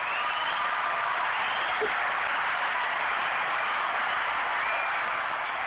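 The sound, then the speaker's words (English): A steady wash of many hands clapping together, dense and even, holding at the same moderate loudness for several seconds without a break and with no talking. “Everybody gets hand claps in this mug except me.”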